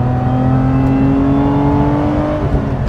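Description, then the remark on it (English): A Camry V6 sports car engine accelerates hard through second and third gear, its loud droning roar climbing gradually in pitch for a few seconds, with no one speaking over it. “Camry V6, like that. That was only second, now it's third.”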